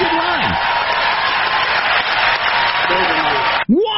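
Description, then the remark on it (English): A crowd applauds and cheers in a loud, dense, steady roar for several seconds. A few voices rise briefly above it before it cuts off abruptly near the end. “And the crowd goes wild!”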